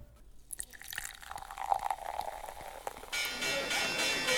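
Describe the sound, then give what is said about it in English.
A bottle of Prosecco is opened and poured in an office: a few light clicks and a glassy clink, then a steady fizzing rush of liquid filling a glass. “Susie and the Dragon scoop up their money, head over to the office, open a bottle of Prosecco, and start planning their company expansion.”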